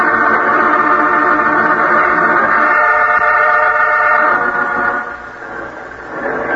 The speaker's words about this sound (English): Here comes the truck, boys. Don't let it get by. If it's loaded with 1 gallon corn syrup cans, that's what we're looking for.